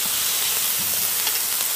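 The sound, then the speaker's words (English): Onions brown and sizzle steadily on a Blackstone hibachi grill, cooked Japanese-style, a continuous bright hiss with faint crackles and no one talking. “This is a hibachi. We got some onions browning. Can you hear that sizzle?”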